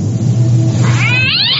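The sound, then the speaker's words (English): A cat yowls angrily in a rising, wavering caterwaul over a steady low rumble, loud, building toward the end of the short burst. “That was an angry cat.”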